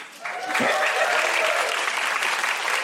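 An audience at a feminist show breaks into steady, sustained applause, a dense wash of clapping that swells quickly and holds at an even, loud level throughout, with a bit of crowd noise mixed in.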